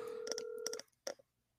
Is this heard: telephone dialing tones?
yes